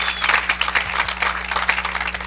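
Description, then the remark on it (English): A church audience claps hands together as praise to God during a sermon, in a dense, steady burst of applause, many overlapping claps forming a loud continuous patter with a low hum underneath. “Somebody give him a hand clap of praise in this building.”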